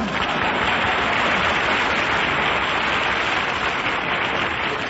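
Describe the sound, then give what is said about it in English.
An audience applauds steadily, a dense, even wash of many hands clapping that stays at a constant loud level for about five seconds, with no voices heard over it. “that applause is liable to tip off Cactus Face.”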